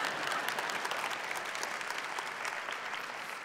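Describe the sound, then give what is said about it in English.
An audience claps steadily, many hands blending into a dense, even patter of applause that holds at a moderate level throughout, with no voices standing out. “And do you want to clap on that? So go ahead.”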